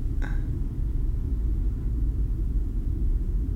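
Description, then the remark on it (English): A steady, low-pitched mechanical hum from a life support system about three feet from the vacuum of space drones on without pause, with one brief faint click near the start and no voices. “Luckily, I really like the hum of the life support system. It's also a bit reassuring that I can hear it, to be fair.”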